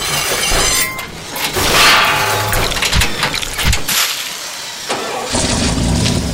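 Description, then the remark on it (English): A powerful luxury car with twin exhaust pipes cranks to life and revs hard several times, the roar rising and falling with sharp bursts, loud with no voices. “For the opera star immediately turns into a luxury automobile, his twin exhaust pipes fuming at the prospect of running our peerless protector down.”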